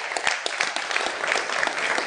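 A crowd applauds steadily, many hands clapping in a dense, continuous patter with a few sharper claps poking through, moderately loud throughout.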